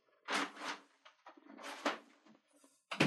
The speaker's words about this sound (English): Sorry, let me close this door.